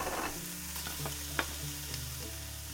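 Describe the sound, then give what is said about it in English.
Breakfast food sizzles steadily in a pan while a utensil scrapes and stirs it, with a few sharp clinks and scrapes standing out over a low hum. No one speaks. “she closed the door to the basement and continued cooking breakfast for Eugene”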